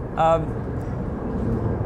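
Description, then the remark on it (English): A big jet aircraft flies overhead, a steady, broad low roar filling the whole clip, with a brief tonal, voice-like burst near the start. “we've got a big jet going over us. We're challenged by noise today.”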